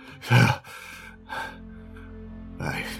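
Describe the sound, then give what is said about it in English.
A voice imitates heavy panting: a few loud, breathy gasps in uneven rhythm, with a short pause before a final ragged breath. “He, like, is panting.”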